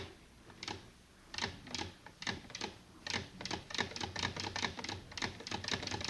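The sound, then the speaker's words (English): A sewing machine stitches a single-thread chain in bursts of rapid mechanical clicks, starting slowly and then running faster and steadier, clear with no talking. “You know how to make a single thread chain on a sewing machine.”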